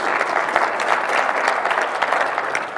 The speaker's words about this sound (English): So here we are starting a new year, and I think this is very important. You can clap for that. God likes it.